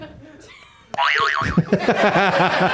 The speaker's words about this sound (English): Buzz your buzzer. Do it properly.